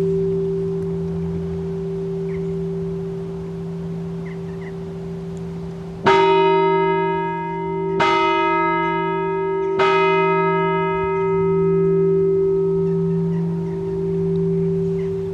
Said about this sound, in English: And that's the entrance bell now ringing. Calling all the monks are in the fields to come in for their lunch.